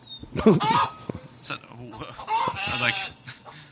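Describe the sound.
A voice imitates a chicken, producing a string of fairly loud clucks and squawky, warbling bursts with short pauses between them.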